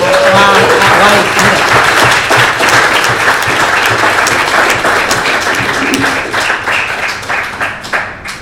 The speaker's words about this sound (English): And we might give a big round of applause